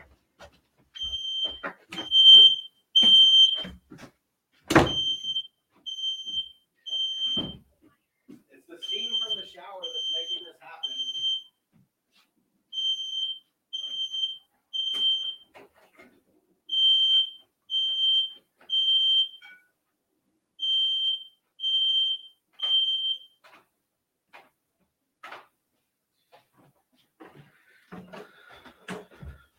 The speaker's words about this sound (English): Oh, my gosh. Hang on a second, guys. Freaking smoke alarm's going off at our house.